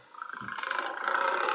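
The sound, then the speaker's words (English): A lion roars, one rough, sustained growl that swells steadily in loudness over a second and a half, with no voices alongside it. “What's that? That's a lion.”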